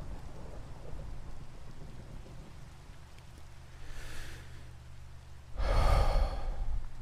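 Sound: rain and thunder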